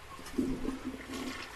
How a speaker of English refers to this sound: Do what? Just flush the toilet. All right. No, it's still coming up.